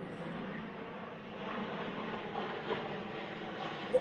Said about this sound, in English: sorry, there's an aeroplane.